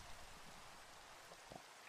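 Steady, faint rainfall hisses evenly across the whole clip, with a few soft droplet taps standing out near the end. No voices are present.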